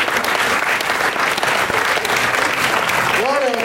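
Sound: round of applause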